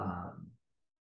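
A woman's single soft, audible exhale during a breathing exercise, like a gentle sigh, lasting about half a second and then fading into silence. It is quiet, with no talking.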